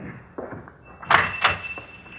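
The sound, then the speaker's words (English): A door is opened: a couple of sharp latch clunks about a third of a second apart, with a thin, steady hinge squeak running underneath, then quiet room tone. “Okay, Pop, open the door like before.”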